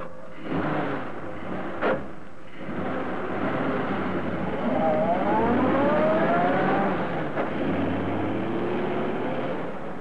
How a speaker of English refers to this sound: The object of this stealthy midnight visit was a new car. The two men pushed the automobile down the slope of the road, jumping in when the car began to gather speed.